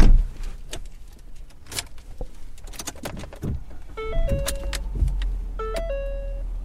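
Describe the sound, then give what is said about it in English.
A steady low rumble of a car driving to Salisbury, heard from inside, with scattered clicks and knocks and two short two-tone electronic chimes near the end. No one speaks. “And ultimately, you know, because I wasn't really getting anywhere, I just decided to drive to Salisbury.”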